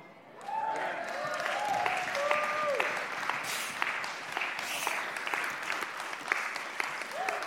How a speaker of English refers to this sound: I think I can hear the people clapping at home. I see you guys. I hear you guys. Listen, do you hear that?